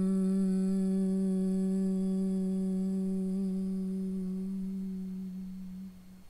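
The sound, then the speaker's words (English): A single voice chants the mantra "hum" in a long, steady hum on one low pitch, rich in overtones, sustained for several seconds before slowly fading out at the end of the breath. “And we'll recite the mantra hum.”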